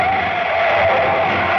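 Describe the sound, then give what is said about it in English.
A truck's tires screech loudly as it skids to a sudden stop when a man walks into its path crossing Van Ness Avenue at O'Farrell, a harsh, steady squeal lasting over a second, with no voices. “Why, you crazy dope, what do you think you're doing walking smack into my truck?”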